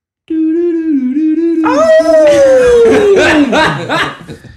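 A loud wolf howl sound effect holds a steady wavering note, then a second howl rises over it and slides slowly downward, the layered cries growing rough and breathy before fading.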